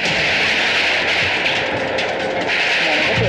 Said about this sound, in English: State Police helicopter drops it. There is the explosion.